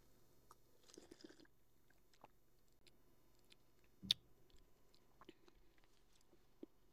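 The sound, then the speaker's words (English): Someone takes a quiet first sip of a freshly opened and poured drink, with soft wet mouth clicks and lip smacks around one sharper slurping moment midway through. No one speaks. “First sip.”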